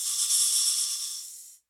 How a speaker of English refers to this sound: But very soon, even from his room, Anansi started hearing the snake's signature sound.